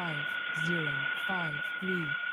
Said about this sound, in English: Or a recorder or something? Right. Reverse speech.